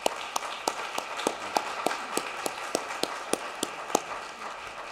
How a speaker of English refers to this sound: I'm particularly grateful for the students and program directors who shared. Let's give them one final applause.